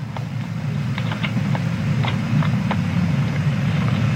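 Rocket engines ignite at launch: a deep, steady engine roar rumbles continuously at high volume, with occasional crackles and pops flickering over the low, dense drone. No voices are heard.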